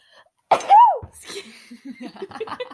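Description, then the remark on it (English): A woman's single loud sneeze bursts out sharply, then trails off into quieter chatter and light laughter from other voices. “Her whole leg went in the air when she sneezed.”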